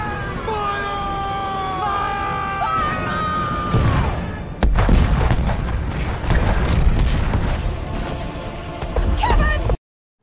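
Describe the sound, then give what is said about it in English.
The show's "Kevin Cannon" cannon-fire sound effect: wavering, sliding whistle-like tones build for a few seconds, then one loud blast erupts and trails off into several seconds of rumbling, crackling aftermath. “I thought we were done with the Kevin Cannon, and here it comes.”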